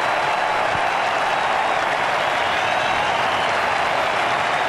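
A large cricket crowd at an Ashes match cheers and applauds steadily after an Australian win as batsman Michael Hussey leaves, a dense, continuous wash of clapping and roaring that stays loud and even throughout, with no individual voices standing out.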